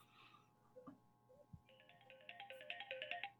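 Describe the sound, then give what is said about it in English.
A mobile phone ringtone plays a bright, beeping electronic melody of rapid repeated notes that grows busier toward the end, preceded by a few soft thumps and clicks. No one speaks. “My phone's ringing again.”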